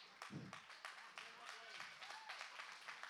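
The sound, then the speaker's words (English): A church audience applauding during a sermon, applause from everyone who is saved: a steady patter of many hands clapping for about three seconds, fairly soft overall, with a faint murmur of voices mixed in underneath. “Oh, there it is. Applause.”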